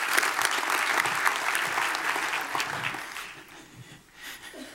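An audience claps in a dense, steady burst of applause that holds strong for about three seconds, then gradually thins and fades out.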